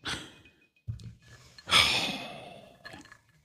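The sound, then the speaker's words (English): Heavy, close breaths rush right against the mic, with a long sighing exhale in the middle and softer huffs around it. No one speaks. “I can hear you breathing still.”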